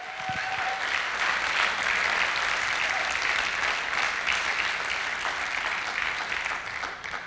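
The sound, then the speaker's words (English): An audience bursts into sustained applause for God during a praise break in a church service, a dense, even wash of many hands clapping that holds steady for about seven seconds before thinning slightly at the end. “Can we just take a praise break for a moment and come on, give God a great round of applause?”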